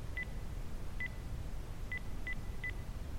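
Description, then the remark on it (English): Five short electronic keypad tones as a code number is punched into a keypad at an uneven pace, one alone, a pause, then four quicker presses, each a bright two-part beep over a low steady hum. “There should be a number, and then punch that into the. Oh, okay. Into the keypad.”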